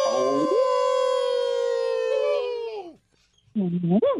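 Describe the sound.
A radio show caller in Virginia imitates a wolf with one loud howl that rises, holds steady for nearly three seconds, then drops away, followed after a short pause by a brief voiced yelp.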